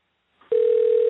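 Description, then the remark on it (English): A call-waiting tone on a Verizon phone line: one steady, loud electronic tone cuts in abruptly after a faint rustle of line noise and holds unbroken to the end, with no voices. “Well, when it beeps like that, he's got Verizon, and it means he's on okay. the other line.”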